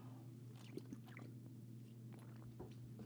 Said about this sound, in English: Let me take a drink of my water right here. Sometimes my mouth gets dry from reading that long.